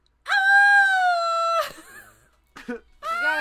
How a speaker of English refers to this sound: Give your worst I'm getting stabbed in the shower scream as we go out. Ready?